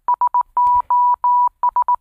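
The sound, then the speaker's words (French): A steady, mid-pitched Morse tone beeps out SOS: three quick dots, three long dashes, then three quick dots, clean and fairly loud with no voices. “Ça, c'est SOS.”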